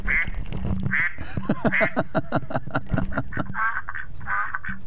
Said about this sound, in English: That's a quack, right?